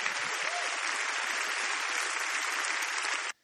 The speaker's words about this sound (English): And the crowd there at Elevation Church is rewarding him for this nonsense with a lot of applause.